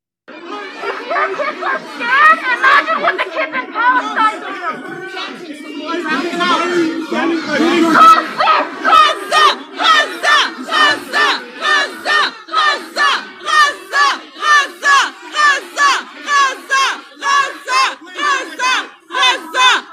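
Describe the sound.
A loud, chaotic protest crowd at a mall in Ottawa shouting over one another, then settling into a steady, rhythmic chant, many voices yelling together in quick repeated bursts. The protesters wear frightening masks and carry bullhorns.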